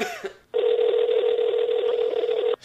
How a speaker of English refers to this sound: Dial him up. We'll see. All right, let me see if I can get him.